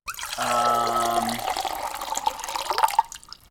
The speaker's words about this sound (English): Nice. That was pretty good pour. That was a good pour.